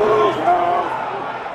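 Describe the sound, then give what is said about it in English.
A crowd at the Capitol, climbing over scaffolding and stacks of folding chairs, shouts the slogan "whose house, our house" in unison, loud, their chant blending into a dense, continuous roar that holds steady for the whole brief moment. “They were kind of climbing all over the scaffolding and the stacks of folding chairs, shouting like, whose house, our house.”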